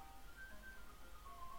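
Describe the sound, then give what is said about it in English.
Faint ice cream truck music, a thin tinkling melody of stepped high notes drifting over a low background rumble, with no talking. “My mic is probably going to pick up an ice cream truck in the background.”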